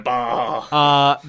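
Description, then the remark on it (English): A person voicing a unicorn imitates a sheep's bleat with two strong, nasal "baa" calls, the second louder and steadier, with a wavering, harmonic-rich tone and no other sounds around them. “I love a unicorn saying bah.”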